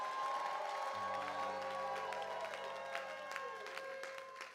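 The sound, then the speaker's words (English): An audience gives the Lord a shout and a clap during a sermon, a dense, continuous roar of applause and cheering, while a sustained organ-like chord enters after a second and holds underneath. “Oh, give the Lord a shout and a clap.”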